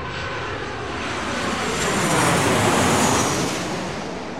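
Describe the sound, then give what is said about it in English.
A jet aircraft approaches with a broad, rushing engine noise that swells to a peak around the middle, then eases slightly as it passes overhead, arriving in the morning carrying the new queen. No voices. “The new queen, Her Royal Highness Cynthia Blupston, arrived via jet this morning and has been taken to the royal houses.”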